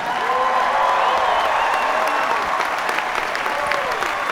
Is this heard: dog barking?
no